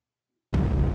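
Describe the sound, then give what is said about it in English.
After a moment of silence, a single loud cannon blast erupts suddenly and keeps rumbling heavily through the end, booming, with no voices. “More cannon fire! Who's attacking us?”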